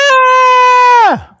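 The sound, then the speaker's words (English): A single loud scream holds one steady high pitch for about a second, then slides sharply downward and breaks off. No other sounds or talking accompany it. “That's a scream. Why are you screaming? Oh, it's a scream.”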